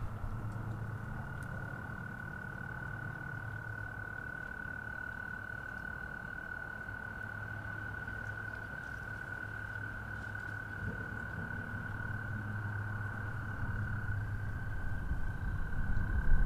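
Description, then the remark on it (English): A steady, unbroken high-pitched trill of American toads fills the background for the whole stretch, a continuous chorus over a low rumbling ambience that grows slightly louder toward the end. “I think you can hear in the background the American toads.”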